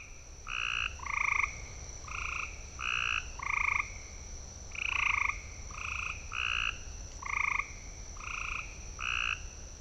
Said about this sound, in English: There's several individuals, and these are all gray tree frogs. And they sound a lot like a bird, and people that are new to birds will hear that in the woods, and they'll go chase it, and they won't ever see a bird flush